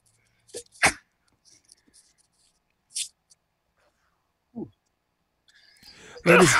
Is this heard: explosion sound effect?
no